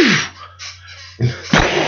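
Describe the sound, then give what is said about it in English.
A voice imitates the arrow sound effects from Rambo part 2: a breathy, hissing whoosh that drops in pitch, then two sharp, noisy thwacks in quick succession, with no words spoken. “Since you brought it up, the sound effects on the arrows in part 2, like just like...”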